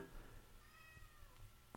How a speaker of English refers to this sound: She meowed right when that happened. Oh. Okay. I don't know if it's going to catch it. Yeah. Like you said, as soon as you stopped. Oh. And then she meowed. I was like, oh. Yeah, cat.